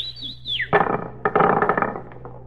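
A person whistles to call someone, a shrill, wavering high note that swoops up and down before sliding downward, then a burst of loud, noisy clattering and rustling sounds follows.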